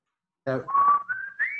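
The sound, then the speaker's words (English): A person whistles a brief tune, a clear tone holding steady and then gliding upward across a few short notes, preceded by a quick voiced sound. “Now, what did you think about the touch of the little murder whistle?”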